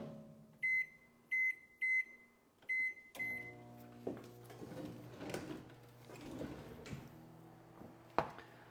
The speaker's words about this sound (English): I got to see what's beeping in my kitchen.